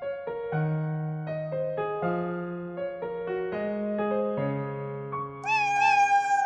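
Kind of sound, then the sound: animal, cat meowing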